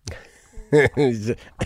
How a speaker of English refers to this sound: I have that weird kind of phlegmy, malignant laugh that turns into a cough.